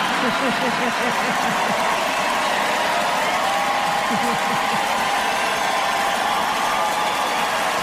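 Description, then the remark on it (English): A large heavy metal crowd roars steadily, a dense wash of cheering and shouting voices that stays loud and unbroken throughout, with individual yells rising briefly out of the din. “The crowd.”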